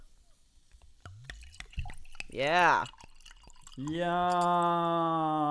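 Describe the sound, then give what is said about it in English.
A few sharp clicks as a clicky-top drink cap is opened, followed by liquid pouring steadily into a glass, with a voice briefly exclaiming in between. “I forgot to say mine's clicky top.”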